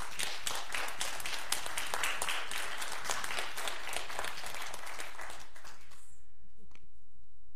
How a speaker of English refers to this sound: Y'all can applaud that if you would like.